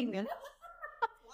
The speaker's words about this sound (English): There's the cat. There's the cat that you were talking about the one episode. It's the window. So I finally found the cat.